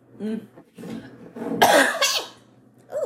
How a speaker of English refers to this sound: Oh, that was loud. I know. Oh, God. I coughed on air.